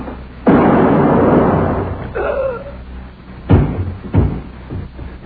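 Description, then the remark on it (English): Three sharp shots from an old pistol from Rio ring out, in Theater 1030's The Screaming Skull: a loud first blast with a long echoing decay, then after a pause two quicker cracks about half a second apart. “Here it is. A pistol. The old pistol from Rio.”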